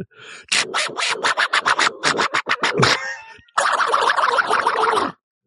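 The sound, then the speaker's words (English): A person imitates Donald Duck, the angry cartoon duck: a quick run of raspy, buzzing squawks, a brief pause, then a longer continuous burst of sputtering, garbled duck-voice chatter, loud throughout. “The angry duck at the end was great.”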